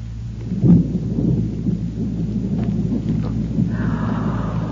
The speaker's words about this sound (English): Oh, my, sounds like a storm blowing up outside, doesn't it, children?